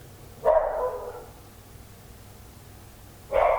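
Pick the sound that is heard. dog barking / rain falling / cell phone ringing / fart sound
dog barking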